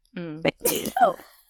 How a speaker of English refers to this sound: Oh my God, I'm going to sneeze.